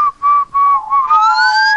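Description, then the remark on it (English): A person whistles a high, thin tone meant to be 2600 hertz, first in three short bursts, then a longer sustained note that wavers and slowly slides upward, fairly loud with no talking. “The whistle exactly 2600.”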